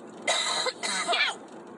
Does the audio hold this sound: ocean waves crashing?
no